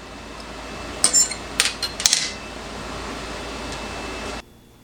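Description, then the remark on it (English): Cutlery scrapes and clinks against a plate as an unseasoned tenderized steak is cut, with a cluster of sharp metallic clicks and scratches between one and two and a half seconds over steady background hum, no talking. “And even cutting is a lot easier on the tenderized version.”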